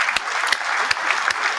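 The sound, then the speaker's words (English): A canned applause effect plays on its own: a steady, dense wash of clapping with a few sharper claps standing out at irregular intervals, moderately loud throughout. “I'm going to go ahead and give y'all a round of applause if I could pull it up real quick.”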